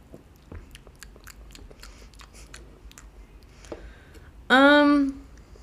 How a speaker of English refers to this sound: All right, let's try it. Ooh, that was weird. Let me give it one more sip.